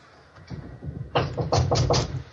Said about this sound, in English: We just heard a knock of the door and then she hung up.